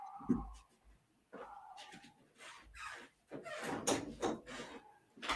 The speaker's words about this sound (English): As we look at this, I got to shut this door because I'm having dog issues.